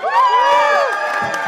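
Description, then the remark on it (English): An audience yells, screams and cheers loudly with overlapping high-pitched voices and whoops, a sustained roar of excitement that holds steady for the whole moment, cheering to vote on whether Team USA won a debate. “So, come on, let's have some more yelling and screaming and cheering from you guys out there.”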